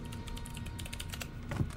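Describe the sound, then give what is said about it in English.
Rapid typing on a computer keyboard while scrolling through a vault's internal mail relay, a steady patter of light key clicks running continuously over a low background hum, with a slightly heavier keystroke near the end. “It's the morning after the heated confrontation, and Walter gets to work right away on scrolling through the vault's internal mail relay.”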